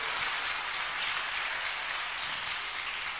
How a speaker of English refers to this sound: I think you should sit down for now. Clap for them. Nice guys. Father, bless them.